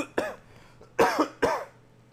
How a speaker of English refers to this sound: Hold on, I gotta cough again.